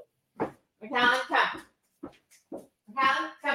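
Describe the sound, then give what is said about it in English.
A dog barks in a few loud, short bursts, a pair of quick yaps early on, scattered softer sounds in between, then another sharp bark at the end. “Sorry, is that your dog barking?”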